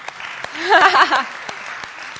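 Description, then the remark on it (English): An audience applauds in a steady wash of clapping, with a few sharper individual claps standing out. A voice briefly rises over the applause partway through. “Yes, you can clap for him.”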